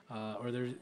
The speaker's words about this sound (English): There's a meow back there?